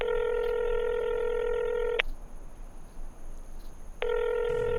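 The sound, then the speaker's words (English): A telephone ringback tone sounds on the line as a call is placed to a sister's phone: a steady electronic ring lasting about two seconds, a two-second pause, then the ring starting again, with no answer. No one speaks. “call your sister again”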